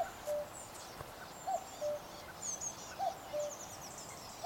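A greenfinch calling in a steady series of short whistled notes about once a second, with thin high twittering from other birds behind it and no voices.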